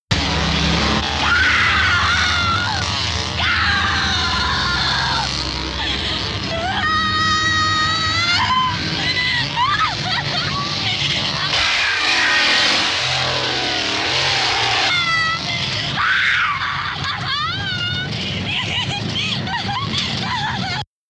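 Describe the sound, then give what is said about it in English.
A woman, Marilyn Burns in the film The Texas Chainsaw Massacre, screams and shrieks again and again, high and piercing, over a steady roaring engine drone that runs loud through the whole stretch. “what's the next scream, Eliza? Marilyn Burns in Texas Chainsaw Massacre”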